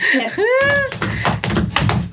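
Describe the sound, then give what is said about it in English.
Banging on a floor: about five dull, fairly loud thumps in a roughly steady rhythm, following a short rising vocal sound. No clear words are spoken. “I'm just banging on the floor.”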